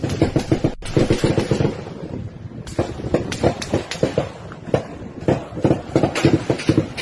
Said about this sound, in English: It just went on earlier today at another border crossing. Listen. Turn your sound up if you have to, but listen to what's going on here. This is gunfire.